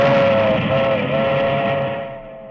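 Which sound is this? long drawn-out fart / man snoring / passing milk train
passing milk train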